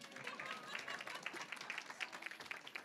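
A small group claps steadily for a few seconds after a prayer, dense overlapping hand claps with no voices rising above the noise.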